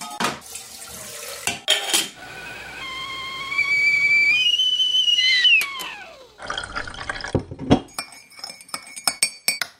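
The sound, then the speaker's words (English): A kettle's whistle climbs to a loud, steady shriek, then slides down and fades, followed by a run of light, irregular clinks of cups and dishes, with running water in the background. “I'll put the kettle on.”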